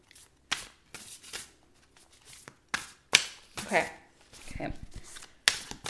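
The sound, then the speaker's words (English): Tarot cards being shuffled, a series of crisp riffling and slapping bursts with brief pauses between them, fairly quiet and heard without other sounds. “So I'll ask you to set your intention while I shuffle the cards and you can let me know when.”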